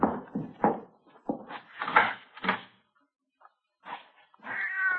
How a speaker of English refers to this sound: Well, maybe it's just a cat out in the streets, you know, out in the side alley, maybe, huh? Mm-hmm. Probably not even in the house.